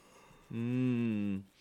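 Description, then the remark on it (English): A single drawn-out, voiced yawn lasting about a second, a steady droning tone that tapers off at the end, with no talking around it. “Oh, well, I guess that yawn's going to signify the end of a laborious podcast.”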